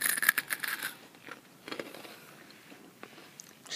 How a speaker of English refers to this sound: I feel like the chip was more of a satisfying crunch.